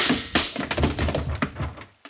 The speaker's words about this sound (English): Yeah, well, I kind of hate to hit a woman that way, but she wouldn't have missed with that rifle.